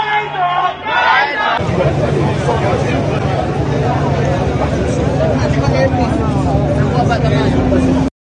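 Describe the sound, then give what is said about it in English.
A large angry crowd outdoors outside a shop produces a loud, continuous roar of overlapping voices and shouts, with one voice standing out briefly at the start before the dense babble fills everything; the shop has been forced to close its shutters. “But yes, there's a big crowd of people outside.”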